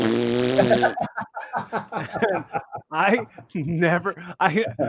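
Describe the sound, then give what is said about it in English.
A loud, buzzy fart noise blown with the lips lasts about a second, then gives way to laughter and excited talking. “I really want to watch that movie again just to make a fart noise at the end of silence.”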